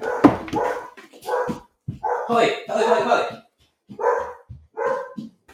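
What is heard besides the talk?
dog barking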